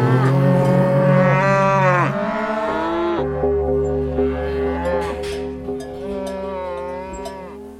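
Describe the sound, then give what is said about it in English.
Several cows moo loudly, long drawn-out lowing calls overlapping one another, one after another without pause, with no talking. “Oh, hey, I think these cows are doing it too.”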